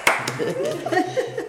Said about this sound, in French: Et c'est là qu'on applaudit.